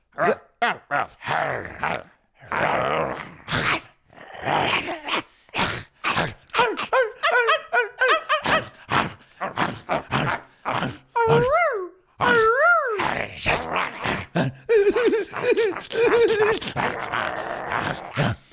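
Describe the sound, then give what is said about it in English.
A person imitates a snarling, biting dog: a long run of rough growls, grunts and snapping barks, broken by a few whiny, wavering yelps. “Oh my God, is that your dog?”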